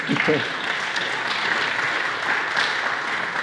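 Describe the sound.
An audience claps steadily for a few seconds, a dense, hissy patter of many hands at an even volume, with a brief murmur of voice at the very start.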